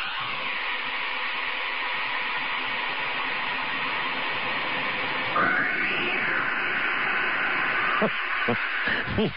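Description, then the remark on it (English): Over a steady hiss of static, a created sound effect of a cat being tossed down Mel's Hole: a drawn-out, echoing cat-like yowl sweeps up and then trails down as it disappears down the hole, followed by a few short, sharp knocks near the end. “The first one is pretty good, as you hear the echo of the cat disappearing down the hole.”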